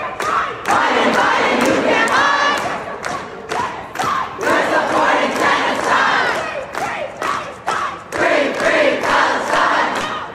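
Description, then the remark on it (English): A protest crowd in Chicago claps together in a steady, even rhythm, sharp unison claps about twice a second, while many voices shout and chant loudly over the beat throughout. “Yeah, I think clapping in unison is about all they're smart enough to do.”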